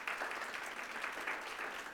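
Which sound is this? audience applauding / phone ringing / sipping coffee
audience applauding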